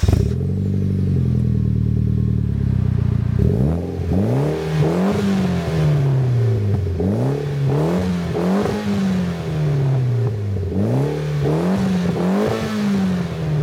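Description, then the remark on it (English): A Mitsubishi Evo's inline-four engine with a 3-inch plus exhaust idles with a deep steady rumble, then revs repeatedly in sharp rising and falling bursts, the exhaust note loud with no talking. “Although a little bit more on the common side of things, given that in the end it's an inline four with a 3-inch plus exhaust, but still sounds amazing.”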